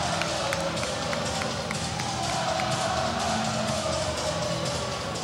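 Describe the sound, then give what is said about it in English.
A high school basketball game crowd, with Weddington playing on the road, fills the air with a steady, loud roar of overlapping chatter and scattered shouts, holding at an even level throughout with no single voice standing out. “You can hear the crowd.”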